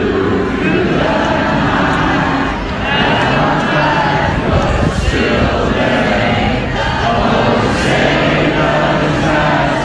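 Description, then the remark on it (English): At a softball tournament game in Fresno, California, on Friday, a huge crowd sings the national anthem on its own in unison, a loud, sustained wall of massed voices with swelling roars that carries on steadily for the whole stretch. “So the crowd started singing the national anthem by itself.”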